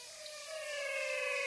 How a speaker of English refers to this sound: Here's his lesson about the frogs of the Pantanal. I recorded these frogs in the Pantanal.